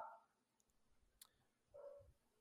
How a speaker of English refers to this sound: The dogs. It's okay. You keep my wife's letting the dogs out, and the dogs start barking like crazy.